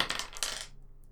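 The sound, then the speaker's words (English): Ten dice are rolled on a tabletop for an attack in a tabletop role-playing game, clattering in two quick bursts of hard rattling that die away after under a second, with no voices. “Roll for the attack with 10 base dice.”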